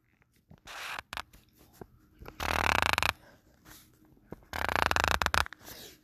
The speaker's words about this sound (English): So guess what I'm writing?